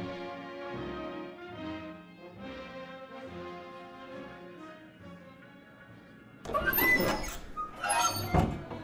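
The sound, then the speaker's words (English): The double doors of a large saloon swing open in the daytime with a creaking, squeaky rush as a man in leather armor makes a cowboy-like entry, then flap back a second time, fairly loud after several seconds of soft tonal music. “Inside of a notably large saloon in the daytime, a tough-looking man wearing leather armor makes a cowboy-like entry through the double doors.”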